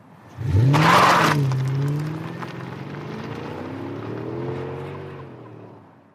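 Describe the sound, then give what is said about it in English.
An electric car accelerates hard, driven faster than the driver has ever gone, its motor whine climbing steadily in pitch over a burst of rushing road and wind noise, loud, with no one talking. “Okay, that was exhilarating with a capital E. I've never driven that fast, ever.”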